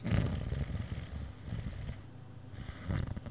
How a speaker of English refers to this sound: Hello? Hello, comic snoring noise? Hello, hello, are you there?